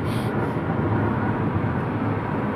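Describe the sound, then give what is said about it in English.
A steady, dense low rumble of road noise inside a small red car being driven, constant in loudness with a faint hiss above it and no voices. “Little red car, which is what I'm driving now, is due for a service, or even overdue for a service.”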